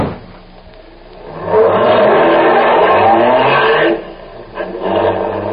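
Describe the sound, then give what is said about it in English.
After a quiet start, a car engine roars up loudly and accelerates for a few seconds with a rising pitch, then drops off abruptly as the vehicle speeds away, leaving a softer rumble. “In fact, I think the car that Pedro was driving, she killed the young man.”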